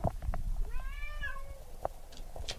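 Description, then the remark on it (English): A single drawn-out meow from Gracie, a cat who has been let out and is yelling, rising then falling in pitch, clear and fairly loud over a rumbling background with scattered clicks and knocks. “And now she's here to yell at us because she's super mad.”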